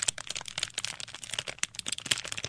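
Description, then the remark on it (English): A plastic Sour Patch Kids candy bag is crumpled in the hands, producing dense, continuous crackling and popping that imitates the sizzle of eggs frying in a pan, with no voices. “Did you know that to create the sound of eggs frying in a pan, in the old days they'd crumple up cellophane?”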